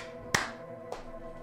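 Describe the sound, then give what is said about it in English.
A single sharp hand clap, made to mark a break in a recording, rings out and decays quickly, followed about half a second later by a much fainter second tap. No one speaks. “We need to plug them in, and we're gonna clap now and come back in a few minutes.”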